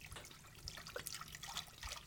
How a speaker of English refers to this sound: Now, pour about a liter of the salt water into the cauldron.